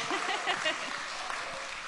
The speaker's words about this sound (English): Now you can clap.